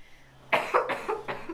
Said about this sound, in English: I've had a cough.